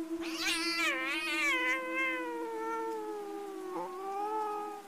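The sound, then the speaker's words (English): A cat, hissing and clawing at a man, lets out a long, drawn-out yowl, rising and wavering at first, then holding a steady moaning pitch, loud, with a brief catch near the end and no talking. “All the while, my cat was hissing and clawing at this guy.”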